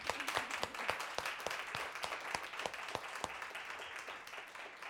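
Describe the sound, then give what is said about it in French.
An audience applauds steadily, a dense wash of many hands clapping with a few sharper individual claps standing out, holding an even level throughout without any voices. “Toi, tu n'as pas applaudi.”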